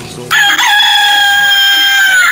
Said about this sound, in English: That's a bird.